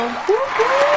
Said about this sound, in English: Now, those people in the studio audience are politely clapping as they begin to unfollow you.